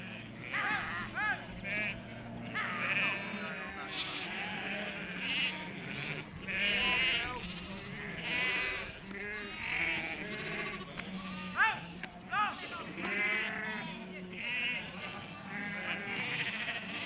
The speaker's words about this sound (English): Local shepherds call up their border collies to bring in the sheep from the moors for shearing.